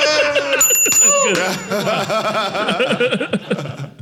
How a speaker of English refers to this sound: Oh, the bells of St. Mary.